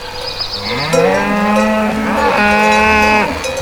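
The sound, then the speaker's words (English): A cow lets out a long, loud moo, its low droning call rising and wavering for a few seconds before trailing off. No one speaks. “Cows produce methane, 甲烷, that is known to contribute to global warming.”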